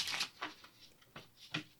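A deck of cards being shuffled, heard as a few quiet, crisp papery bursts and riffles spaced irregularly over a couple of seconds, with no talking.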